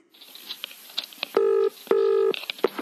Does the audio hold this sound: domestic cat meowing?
no